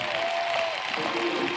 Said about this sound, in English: Now, you guys, I told you in the buildings, you got to clap. You can't just amen because I can't hear you.